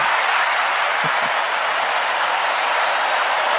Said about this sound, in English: No, it was that button that just played of a bunch of people clapping and cheering.